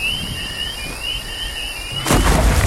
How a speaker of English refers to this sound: Explosion sound? Oh, that was the nuke going off. That sounds pretty far away.